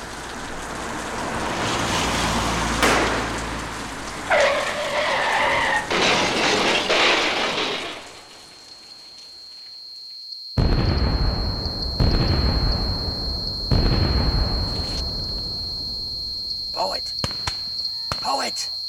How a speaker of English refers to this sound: One that has led to a terrible car crash.